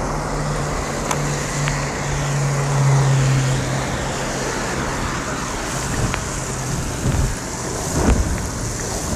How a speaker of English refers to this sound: It's just rain.